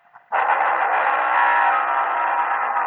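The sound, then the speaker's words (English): A car engine bursts into a loud roar after a brief quiet moment and holds at full, steady intensity as the car tears off at speed, its tires kicking up a wall of dust. No one speaks. “so as I ran toward my car and the wall of dust, his tires had kicked up.”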